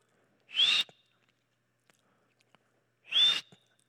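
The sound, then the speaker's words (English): Two short, sharp whistle blasts, made by mouth to imitate a coach's whistle. They are loud, separated by a few seconds of near silence with faint clicks. “I wish I had a whistle.”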